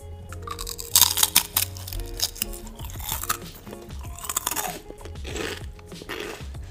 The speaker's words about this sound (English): Okay. You hate the sound of people chewing. Here we go. Just a forewarn. But this is for you ASMR people. If you don't like the sound of people chewing, tune out now.